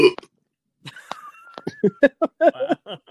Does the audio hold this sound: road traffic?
no